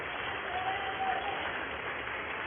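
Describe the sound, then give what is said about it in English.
Sustained applause from members in the US House of Representatives chamber for Representative Schiff as he presents himself in the well to be censured, a dense, steady wash of clapping that holds at an even level throughout with no voices standing out. “They're actually applauding this guy for what he did for 4 years, which was lied to the American people.”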